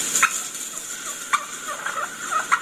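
Soft wild turkey hen calls made under the breath: low rolling purrs broken by a few light, sharp putts spaced irregularly, quiet overall against a faint hiss, no voices.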